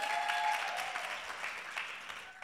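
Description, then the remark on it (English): An audience at Christ Uncensored House church claps in a steady, dense patter of many hands, moderately loud and sustained throughout, with a few bright tonal streaks early on and no clear talking over it. “I see like 20 people that believe that and 30 people that half clap.”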